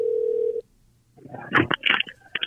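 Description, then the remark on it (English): A steady telephone tone sounds clearly for about half a second, then cuts off into a brief silence before a burst of crackly, muffled phone-line noise follows, as a call is placed to a restaurant. “Is this Carrollton by, right by I-10? Are you ready to hit it?”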